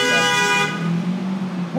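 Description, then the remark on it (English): A car horn blares in one sustained, loud honk for most of a second from a car driving by, then cuts off, leaving the low rumble of the passing vehicle's engine. “We have people honking, driving by honking and waving, and even though we're on the second story, we'll let that car go by.”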